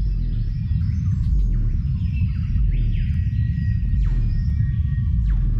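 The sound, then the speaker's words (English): A deep, rumbling cassowary call, the lowest-pitched bird call in the world and barely audible to humans, throbs steadily at the very bottom of the range, while smaller birds chirp and whistle in sweeping phrases above it in a forest setting. “It's the lowest pitched bird call in the world, and it's barely audible to the human ear.”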